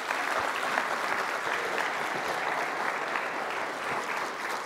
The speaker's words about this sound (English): Can I hear a round of applause for these two?